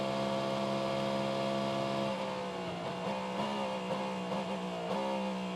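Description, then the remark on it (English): A sports car engine roars at high revs as the car changes up coming out of Speedway Turn 4 and through the tri-oval of a race track, its loud, buzzing harmonic tone holding steady and then dipping and rising in pitch a few times. No voices. “Through the tri-oval now, listen to the engine notes.”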